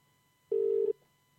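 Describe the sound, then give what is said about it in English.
A single short, steady telephone tone, an odd beep-like dial tone lasting under half a second, loud and clear against near silence, with no one talking. “It's not a normal dial tone either.”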